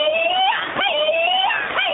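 A loud, shrill warbling tone, like an electronic war cry, from the Warrior Whoop plug-and-play module by Xena Scream Industries, a beeper tone paying tribute to Xena. Its pitch slides up, dips and swoops in repeating wavering phrases, sounding alone and continuous for two seconds.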